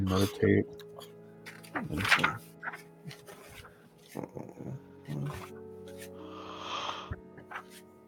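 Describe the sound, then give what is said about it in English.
A person imitates snoring, making a few nasal snorts and grunting breaths, including one louder snort, and ending with a breathy, rasping exhale. “Like cute little snores. And then the occasional loud snore, and then you have to like smack him to roll over.”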